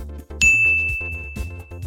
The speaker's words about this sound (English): Each exercise will be described, and then you will simply repeat that exercise or hold that position until I say stop. There's a handy little bell sound, too.